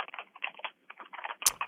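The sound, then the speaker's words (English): Rapid typing on a computer keyboard by a caller connected online, a steady patter of crisp key clicks with a brief pause midway and one sharper, louder clack near the end. “Samantha, you're typing.”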